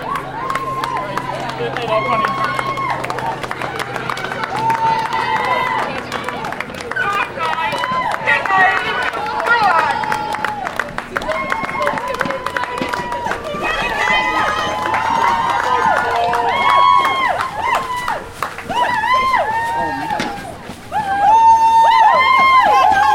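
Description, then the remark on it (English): A group of cheerleaders dressed in pink cheers loudly and continuously from a lorry as it is passed, many high voices overlapping in shouts, whoops and chant-like calls that rise and fall without a break. “Just passing a group of pink cheerleaders on a lorry. That's where all the noise is coming from.”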